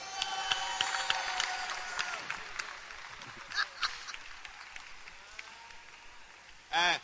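An audience applauds with a steady spatter of claps and some crowd noise, the clapping thinning out midway before a short, loud burst near the end.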